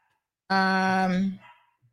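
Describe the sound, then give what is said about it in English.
A single loud dog bark from a dog named Zeus, drawn out and tonal for almost a second, with a short fading tail and no other sounds around it. “I don't know why Zeus is barking.”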